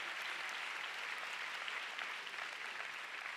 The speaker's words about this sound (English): Oh, come on, let's give God a big clap. Give me a big clap.